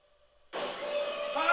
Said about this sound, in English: Oh my god, he comes crashing through the shower door! And that's I Know What You Did Last Summer.